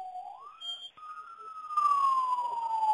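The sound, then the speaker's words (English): Wailing ambulance sirens sweep up and down in pitch, growing louder as the ambulances approach, with a broad wash of street noise building underneath. “And right now, the ambulances are coming where we are right now, and I think they're coming to monitor the situation.”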